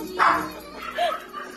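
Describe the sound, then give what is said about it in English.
A dog whimpers while being groomed, giving two short, high whiny cries about a second apart, with a faint murmur of background noise between them. “The dog's like someone killed me.”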